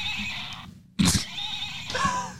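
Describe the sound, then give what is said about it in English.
A toy stick horse gives an electronic neighing whinny, loud, with a sharp onset after a brief pause and a tinny, wavering tone lasting a couple of seconds. “I knew at least one of those made sounds. He has a horse on his back.”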